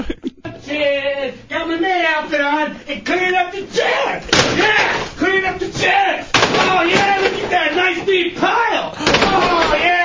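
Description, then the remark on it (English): Chairs are picked up and stacked into a pile during a clean-up, with several loud wooden clunks and knocks at irregular intervals. A person talks continuously over the clattering. “This is me cleaning up the chairs.”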